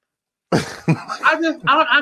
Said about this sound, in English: Coughing.